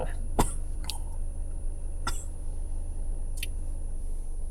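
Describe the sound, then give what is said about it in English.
A few sharp, husky coughs burst out at uneven intervals inside a car, over a steady low engine-like rumble, with no talking. “Cheese cough. Do not barf in my car.”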